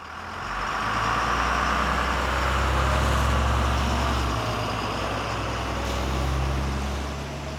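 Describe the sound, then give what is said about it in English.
Steady interior rumble of a new City of Phoenix express bus moving in the morning: a low engine drone with constant road noise and a faint hiss, loud throughout, with no one talking. “We are lucky enough on the bus this morning”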